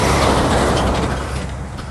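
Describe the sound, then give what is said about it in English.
A loud, steady roar of road traffic passing on a road with blind corners that kinks left-right over an old railway bridge, heavy with low rumble and broad hiss, easing slightly toward the end without any break. “Sorry, just having to zigzag for traffic and a couple of blind corners here just to kink in the road.”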